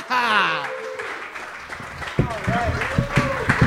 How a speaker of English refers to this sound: Well, folks, let's clap real hard, get the show going, huh?